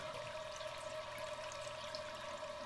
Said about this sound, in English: So it opened up the tank, kind of just full of green color. And every time you flush it, it just like bounces off the Jell-O and goes all over the floor.